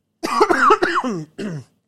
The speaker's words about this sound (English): Hold on, got a cough.